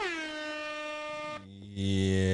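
A loud, blaring air horn sound effect with rich harmonic tones, holding steady before shifting pitch and ending in a heavier, lower blast, with no voices.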